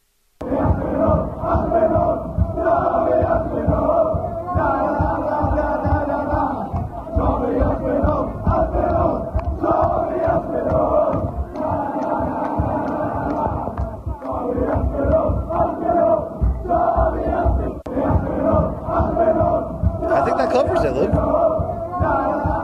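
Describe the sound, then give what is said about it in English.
A large crowd in the London streets at UFC London chants and cheers for Tom Aspinall loudly and continuously, voices rising together in rhythmic bursts with a dense roar of shouting throughout. “Just listen to this crowd in the London streets.”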